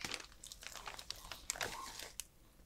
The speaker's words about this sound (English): I can hear you rustling the bag of cheese.